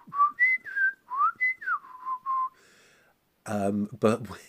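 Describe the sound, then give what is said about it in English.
A person whistles a quick run of short, sliding pitched phrases, mimicking the chirpy penny-whistle voices of the Clangers puppets, followed by a brief pause and then a burst of voiced speech. “The clangers were voiced using penny whistles, so they were kind of like...”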